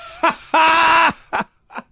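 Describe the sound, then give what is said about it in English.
A voice mimics a woman's loud snoring: a short grunt, then a long, strained, groaning snore, followed by two brief snorts that grow fainter, with no other talk. “I did not remember her snoring like this.”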